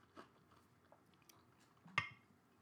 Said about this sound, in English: Excuse me, chewing ice.